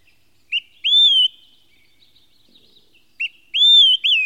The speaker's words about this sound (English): the birds came back. The flycatchers, they were seeing birds they hadn't seen in so long in that place because their environmental issue was addressed.